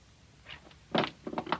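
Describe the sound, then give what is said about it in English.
A gun drops onto the floor with a solid thud, followed by a couple of quick clattering knocks as it settles, with no talking. “Just don't try to raise that gun, Dollar. Curly, drop it. Drop it, Dollar.”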